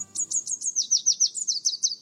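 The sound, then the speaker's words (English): A red warbler sings a rapid, even series of high, bright chirping notes, about a dozen in quick rhythm, clear with a soft low background hum. “If you know how to distinguish it, the song of the red warbler is enough to tell you whether the morning is clear.”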